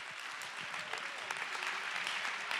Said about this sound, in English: Someone clap your hands and give God the praise.